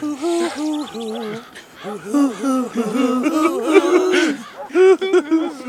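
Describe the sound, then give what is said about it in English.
A person vocally imitates owls, giving a run of wavering, looping hoots in quick succession, fairly loud, with some giggly, chortling inflections mixed in. “Some owls flying by.”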